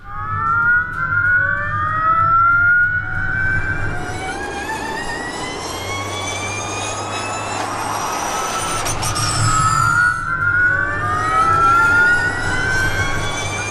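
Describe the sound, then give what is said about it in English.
An FIA Formula E electric race car, in its first testing and fitted with a 25% smaller battery, whines loudly, its high-pitched motor tone sweeping upward again and again as it accelerates past, over a low rumble of tyres and track noise, with no talking. “You know, it kind of sounds just like you'd expect, an electric car on steroids.”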